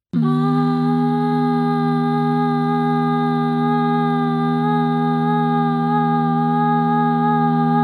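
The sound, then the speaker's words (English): A steady, resonant humming chord of bees in chorus, some humming on a low note, some on a higher note and some in between, many layered tones sounding together; it starts abruptly and holds at a constant loud level throughout with no talking. “Together they create a resounding chord that vibrates through you as you stand and listen.”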